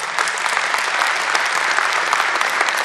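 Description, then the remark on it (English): A crowd claps steadily, dense overlapping handclaps forming a loud, even wash of applause that holds without letup for a few seconds. “How many of you believe that just by applause?”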